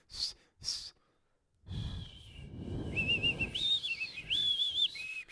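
human body sound, person attempting to whistle

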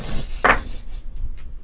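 dice being rolled

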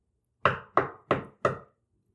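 household object, knocking on a door

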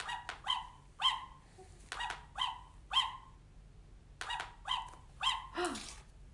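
animal, puppy barking

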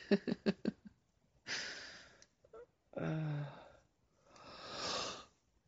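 human body sound, a person yawning

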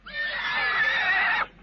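animal, frightened horse neighing

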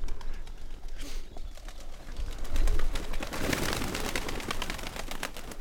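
bird, pigeons cooing

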